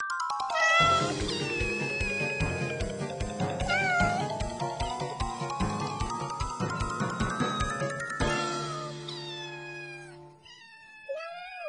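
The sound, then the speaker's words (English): Cats meow again and again while playing and chasing each other, one stuck in a fake tree, with drawn-out calls that rise and fall in pitch. They sound fairly loud over a steady, pulsing background, and a few shorter, higher mews come near the end. “What are you cats doing?”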